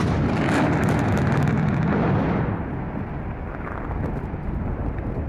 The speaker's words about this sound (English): Three-quarters of Mt Mulligan's men were in the mine that day. That's three in four. They worked one day shift. At 9:25 a.m, there were two large explosions.